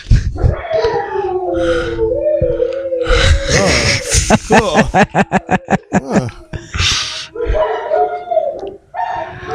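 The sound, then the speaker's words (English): Dogs bark and howl on a home camera: Drago, sitting in a chair staring out the window, barks at something and Rocky joins in; a drawn-out wavering howl gives way to a rapid burst of sharp, rhythmic barks, then more yips and howling, loud and somewhat tinny. “Drago is sitting in this chair, staring out the window, barking at something, and then Rocky's just joining in.”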